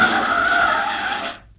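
A latest-model convertible car skids to a halt on a dusty Kansas road with one loud, sustained tire screech lasting over a second, then cuts off abruptly. Prominent, with no voices.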